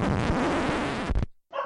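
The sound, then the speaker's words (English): A dog named Lucy barks loudly in a dense, harsh burst lasting about a second, then falls silent briefly before one more short bark. “Sorry about that, it's the dog.”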